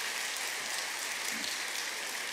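An audience clapping, a dense, steady wash of many hands with no separate beats, crackly and bright, holding at an even loudness for the whole stretch with no voices over it.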